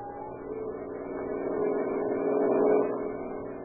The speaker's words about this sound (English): On the wide cement highway leading out of Olympia, Washington, two boys stand, thumbs pointed south in the familiar gesture of the hitchhiker, and watch the steady line of cars as they speed by.